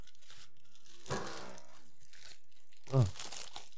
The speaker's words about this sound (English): All right, I'm opening this first package.